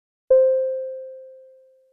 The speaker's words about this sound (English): There will then be a beep and a short pause for you to respond with an appropriate response.